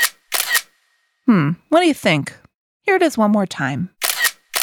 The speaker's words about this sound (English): So, what's that sound? A camera! The sound you heard was a camera. Many different robots use cameras.